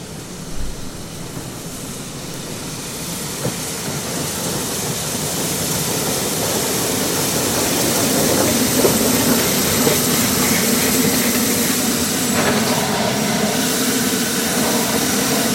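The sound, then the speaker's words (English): A steam train chuffs slowly into a station, a steady, rumbling mechanical roar with hissing that swells gradually louder as it draws nearer, with no voices. “leave you with the sound of our lovely train that's going to be slowly chuffing into the station.”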